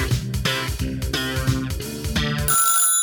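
A telephone rings with a bright, melodic electronic ringtone, repeating a quick patterned tune loudly, with no voices over it.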